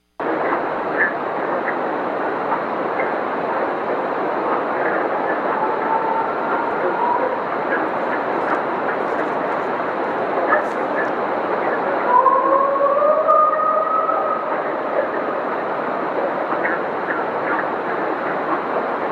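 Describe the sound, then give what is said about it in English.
A purported Bigfoot howl recorded by a woman: a long, rising, wavering wail with a fainter, similar cry earlier, both half-buried under a steady, loud hiss of background noise. “She says it's a Bigfoot howl.”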